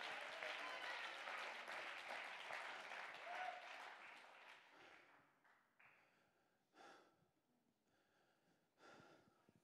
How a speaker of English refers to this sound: Over here, let's clap our hands and give God the praise.